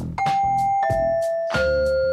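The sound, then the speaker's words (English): A doorbell chime, played as a sample doorbell sound, rings three clear, resonant tones in a descending sequence, each note struck and left ringing into the next. It is loud, with no voices. “Sample some doorbell sounds?”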